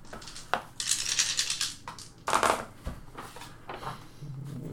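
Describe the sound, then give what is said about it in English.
Six dice, rolled for a Dexterity plus Brawl check at difficulty 7, clatter and tumble across a hard tabletop in a few bright, rattling bursts, then settle with scattered small clicks. Fairly loud, with no talking. “Roll, that's Dex Brawl, Diff 7.”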